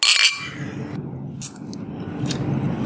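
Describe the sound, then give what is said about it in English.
Beer glasses clink together in a toast during a beer tasting: a bright ringing tap at the start, followed by a couple of lighter, quicker clinks over a low murmur. “Cheers, guys. Yeah, cheers. Cheers.”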